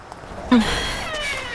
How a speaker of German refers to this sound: Die Tür hätte Andy aber auch ölen können. Ist halt alles alt hier.